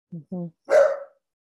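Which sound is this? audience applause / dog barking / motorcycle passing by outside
dog barking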